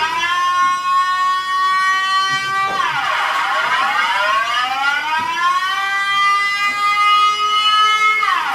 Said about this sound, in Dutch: De sirene gaat. Gealarmeerd kijk je op je horloge. Het is geen 12 uur. En het is ook niet de eerste maandag van de maand. Dus dan moet er wat anders aan de hand zijn.